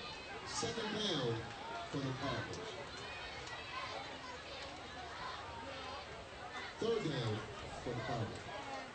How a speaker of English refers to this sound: Again, very nice crowd on hand tonight. As we look down, stands on this side for Princeton pretty full. And Colerain filled up late.